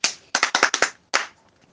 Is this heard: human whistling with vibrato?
no